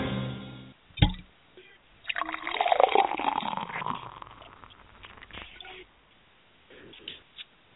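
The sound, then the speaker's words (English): A sharp click, then beer pouring, a steady gurgling, fizzing stream for about three seconds that tapers off into quieter trickling and foam, opening the Kayak Fishing Radio Show. “With that beer pour, you guys know it's another Monday night edition of the Kayak Fishing Radio Show.”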